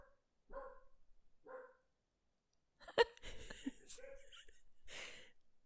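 A small dachshund lets out two sharp, separate yaps, then breaks into a louder, busier flurry of barking amid other clattering noise, in the background.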